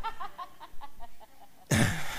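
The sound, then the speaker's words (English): A voice imitates gentle dove cooing with a quick run of soft, rhythmic vocal pulses that fade away, then an abrupt loud burst of noise cuts in. “But peaceable, you know, the little gentle coos, the gentle coos of a dove.”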